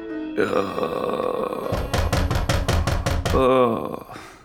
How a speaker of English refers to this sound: And now it's pounding so loud it sounds like it's coming from the door.